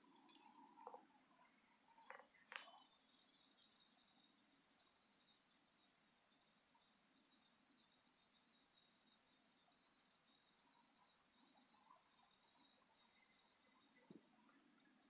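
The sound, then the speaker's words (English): A steady, continuous chorus of crickets trilling at night in southern Indiana, constant throughout, with a few faint knocks and rustles in the background and no one speaking. “But that is the sound of crickets.”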